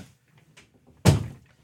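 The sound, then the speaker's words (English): A door swings shut with one solid thud after a moment of near quiet and faint shuffling; the impact rings out briefly and fades. No one speaks. “Sorry, I have the door creaking over here.”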